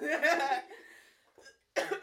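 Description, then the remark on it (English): Two bursts of coughing, a harsh, rough fit lasting about half a second, then a short pause and another sharp cough, loud and unaccompanied by speech. “I'm coughing.”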